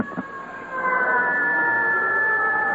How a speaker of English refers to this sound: there goes a siren, as you can hear.